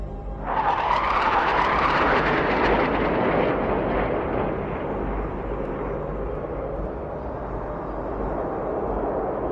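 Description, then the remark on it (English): Three jets roar overhead, surging in quickly to a loud, broad rumble that lingers and slowly mellows as they pass. No one speaks. “Three jets flew by.”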